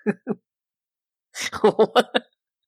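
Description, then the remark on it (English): Two quick coughs, a pause of about a second, then a tight burst of roughly six harsh, voiced coughs in rapid succession, fairly loud with no talking. “It was just coughing.”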